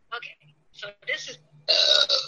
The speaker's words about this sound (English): And then she burps.